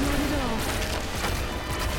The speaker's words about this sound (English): Let's shoot our giant cannon. Aw, oh, the cannon is... The fire angle of the cannon does not change often enough.